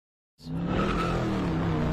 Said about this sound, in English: There was a press conference, and as the LA deputy sheriff is talking about this incident, there's cars coming by and passing with a loud exhaust.